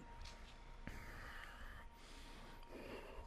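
A slow, hissing ujjayi yogic breath drawn through a constricted throat, in and out through the nose, steady, rising and easing like an ocean-like rasp, with no talking over it.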